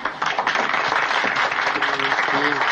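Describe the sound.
A crowd of classmates claps steadily in a dense, continuous wash of applause after a student's campaign speech in a school election, with murmuring voices and a few cheers rising underneath near the end.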